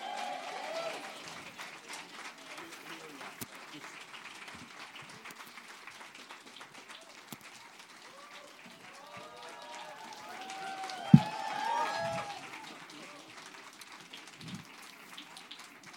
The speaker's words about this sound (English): But right now, I'd like to bring out our panelists. Let's give them some applause here, everyone.